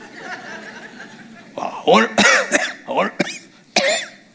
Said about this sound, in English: Why do I cough all the time?